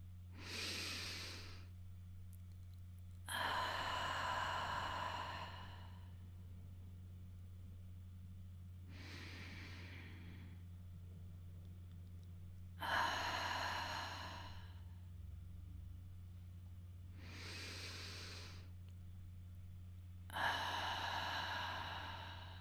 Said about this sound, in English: Let's shortly ground ourselves to get in this receptive mode. Let's breathe in and out a couple of times together.